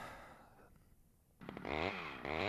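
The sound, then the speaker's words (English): A loud, buzzy chainsaw sound effect from an app suddenly kicks in after a quiet moment, its engine pitch revving up and down in rough sweeps as it drones steadily. “Chainsaw freaking crack all day.”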